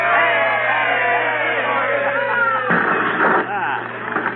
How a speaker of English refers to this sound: Now, let's have a cheer, folks. Here we go. Hey!